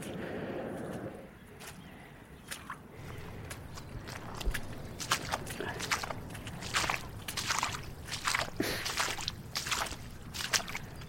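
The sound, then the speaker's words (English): Steady footsteps squelch and splash as someone wades through pooling water in a waterlogged field, each step a wet slosh in a regular walking rhythm, with no one speaking. “It's pooling, and it's going to be quite a wading job to get through this next section.”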